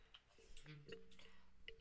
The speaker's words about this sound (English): Okay, you're typing.